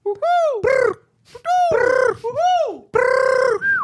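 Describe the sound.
A person imitates a bird call with a run of loud, swooping cries, about five in quick succession with brief pauses, each voice rising then falling in pitch.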